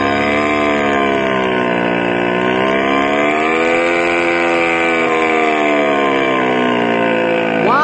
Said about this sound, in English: Some engine